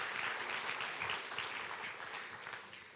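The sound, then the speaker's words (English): A crowd breaks into steady applause for a young girl volunteering to come up front, many hands clapping in a dense, continuous patter that holds at an even level for the whole stretch before easing slightly at the end. “Okay, give this young lady a big round of applause.”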